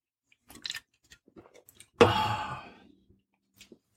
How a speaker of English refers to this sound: But let's just take one of two gulps.